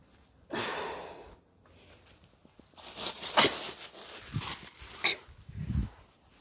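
A dog sniffs and snorts in the room, a few short breathy bursts and snuffles over several seconds, with a quieter huff at the start and a low grunting snort near the end.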